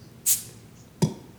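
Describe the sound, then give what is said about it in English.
A glass Coca-Cola bottle is popped open: a brief, bright fizzing hiss of escaping gas, then about a second later a single sharp clink, fairly quiet, with no talking. “I think every six-pack that I get has Santa Claus's face on it, the classic rosy-cheeked Coca-Cola Santa Claus, but there's something about these glass bottles, and I'm going to little pop this open. We'll see how it sounds.”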